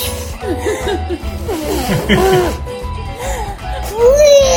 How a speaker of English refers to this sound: He huffed and puffed and tried, but he couldn't blow that candle out. The video of the toddler trying to blow out those candles has gone viral.